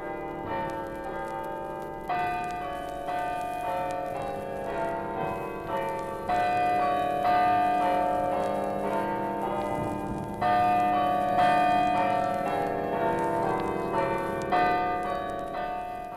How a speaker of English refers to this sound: And here you may hear a welcome from the chimes of the Church of the Immaculate Conception, the joy bells of Wexford.